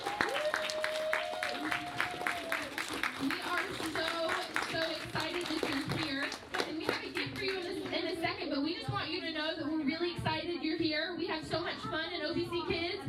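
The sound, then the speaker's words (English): A church audience at a Sunday service applauds warmly and steadily to welcome new children, many hands clapping in a dense, continuous patter with some cheering and voices mixed in, sustained at an even level throughout. “So let's welcome them by giving them a big round of applause.”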